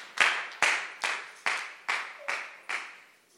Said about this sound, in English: So put your hands together for Jesus, clap for Jesus, and stand onto your feet.